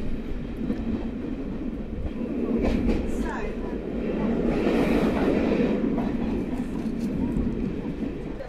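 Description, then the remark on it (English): A steam-hauled train on the Steam Dreams Mystery Tour rolls steadily along the rails, passing through Hereford Station; a continuous rumble with rattling wheel noise that swells slightly midway and then holds at a constant, moderately loud level. “Making progress, passing through Hereford Station where we stopped for water last night.”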